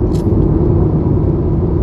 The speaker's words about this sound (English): Oh my goodness, it is traffic. What's going on? Why is the traffic going this way? Oh, it's an accident.